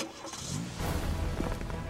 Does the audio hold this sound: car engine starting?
yes